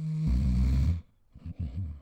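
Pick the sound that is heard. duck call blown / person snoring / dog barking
person snoring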